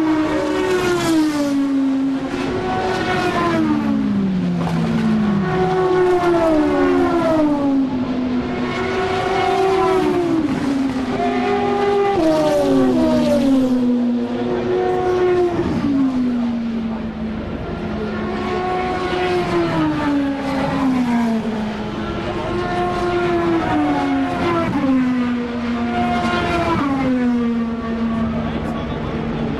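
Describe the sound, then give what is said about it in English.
Race cars, with a Peugeot leading and Aston Martins among them, scream past one after another at racing speed at Le Mans. Their high engine whine rises and drops in pitch with each pass in a loud, nearly continuous stream of roaring engines. “of the Astons really scream.”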